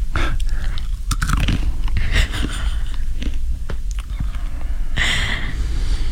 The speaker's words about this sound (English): Okay, I gotta turn this down so you can really hear the crunch of the dog food.